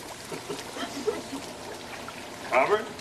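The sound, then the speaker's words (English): Steady bubbling, rushing water churns from a strong jet running in a tub, with a brief voice-like burst near the end. “The bubbles tickle. Hey, you know, you're right. This jet is stronger.”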